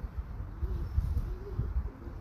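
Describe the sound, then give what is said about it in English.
Soft, low cooing of pigeons or ducks murmurs faintly over a dull outdoor rumble. The calls blur into a continuous, muffled background with no voices. “I don't know if phone's picking this up, but you can hear some ducks cooing. Or pigeons.”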